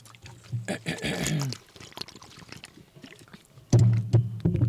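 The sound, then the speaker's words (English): A cup lid squeals sharply as someone sips water from the cup, a strained, rubbing squeak mixed with slurping and liquid sounds, followed by a quieter pause and another burst of low, buzzy noise. “You should have switched the lids out on that cup because that one squeals.”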